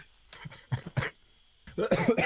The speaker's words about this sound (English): I was laughing and it developed into a cough, probably because I'm gagging at how bad the NFC East is.